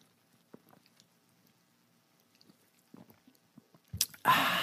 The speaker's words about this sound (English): Hang on, I got a little something going on with my voice here. Going to take a little sip off of the old club soda. One second.